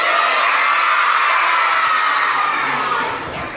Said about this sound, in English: On the count of three, yell out your favorite dinosaur. One, two, three.